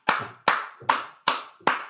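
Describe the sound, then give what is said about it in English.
A short burst of applause: five sharp, evenly spaced hand claps in a slow, steady rhythm, each crisp and loud, with no voices. “Let the applause die down a little bit.”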